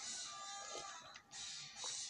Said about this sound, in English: I'm taking a sip of my cold beverage here. Give me one sec.